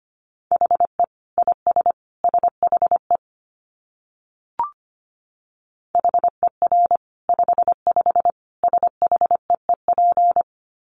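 Rapid Morse code practice tones at about 25 words per minute: a single steady mid-pitched beep keyed into quick dits and dahs, in two bursts split by a pause holding one soft click.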